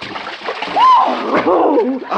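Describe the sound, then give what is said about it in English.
A loud splash as people plunge into very deep water, about 30 feet deep, followed by churning and sloshing, with brief voiced exclamations rising over the noise. “Yeah, this water's great. My goodness, you are a good swimmer.”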